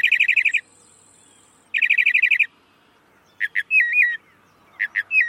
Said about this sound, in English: Mockingbirds sing all year. In the breeding season to attract mates, the rest of the year to claim feeding territories. In spring, a male mockingbird sings all day, hundreds of variations, then sings all through the night.